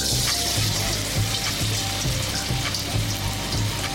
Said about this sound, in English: I'm going to fry up our tofu and try and crispen it up a little bit so I get some of that texture.